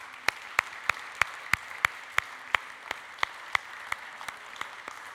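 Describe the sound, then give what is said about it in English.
Applause for the finance committee in a steady, even rhythm: about sixteen sharp, crisp claps at regular intervals over a soft background hiss, with no talking. “So can we give them a big round of applause?”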